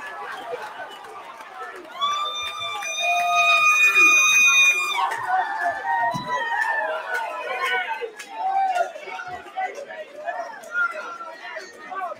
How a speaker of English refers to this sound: The fight has been waved off. Listen to this crowd. Listen to this crowd.